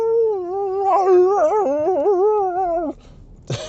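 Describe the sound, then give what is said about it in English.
A dog lets out a long, wavering howl that rises and dips in pitch, slipping into whimpering whines for about three seconds, followed by a brief noisy burst. “Shout out to the dogs, especially the rescue dogs, carrying bear trauma that their owners have no idea about.”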